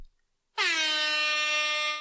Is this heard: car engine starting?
no